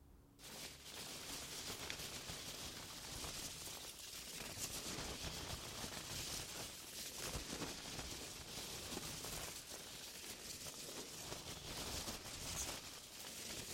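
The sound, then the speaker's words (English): Packing peanuts rustle and churn inside a cardboard box, a dense, steady crackling and squeaking that fills the whole stretch, fairly loud, with no voices. “The majestic and maximalist mellifluous sounds of packing peanuts in a cardboard box.”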